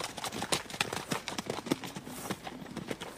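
Hooves of ridden horses clip-clop in a busy, overlapping patter as several riders move off together at a walk or trot, steady, with no voices.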